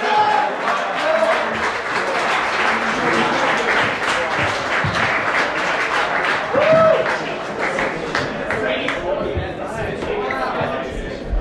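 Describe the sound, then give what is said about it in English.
A crowd claps and cheers steadily, with scattered voices, three or four of them yelling "Tremendous", shouting over the dense, continuous applause throughout. “It's kind of muffled, but there were like 3 or 4 people that yelled Tremendous.”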